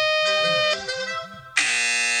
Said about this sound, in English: Air horn. Because you're going to hear it a lot. That's a MIDI. Oh. That's a MIDI air horn.